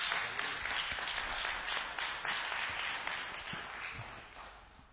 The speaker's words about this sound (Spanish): Dale un fuerte aplauso al Señor en el nombre de Jesús.